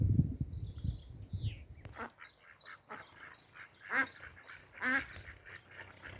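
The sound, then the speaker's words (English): A duck quacks near a wildlife pond in a run of short, nasal calls, with louder honking quacks near the end, over soft outdoor background noise and a brief low rumble at the start. “Go on then, ducky, down you go, good girl.”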